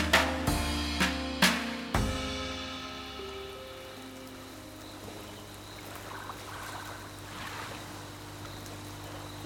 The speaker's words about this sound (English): Ma'am, would you turn off that blasted motor?